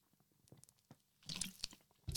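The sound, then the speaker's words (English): Someone takes sips of white grape and blackberry fizzy sparkling water from Tesco: a few faint wet clicks, then two short bursts of bubbly slurping and swallowing, quiet overall with no talking. “This is sparkling water. White grape and blackberry from Tesco.”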